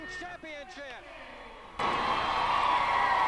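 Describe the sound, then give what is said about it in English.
A wrestling crowd at Freedom Hall in Johnson City erupts into loud, sustained cheering and roaring, after a second or so of scattered rising and falling whoops and shouted voices, as Bobby Blaze pins Chris Candido to win the Smoky Mountain Junior Heavyweight title. “Crowd are loving that.”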